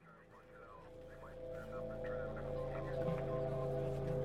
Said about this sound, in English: There's scraping, a scrabbling sound, and then the line goes dead. The call light flicks out. Just an empty dial tone.